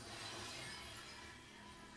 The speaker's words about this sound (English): Just fucking glass doesn't even shatter like that on fucking cars.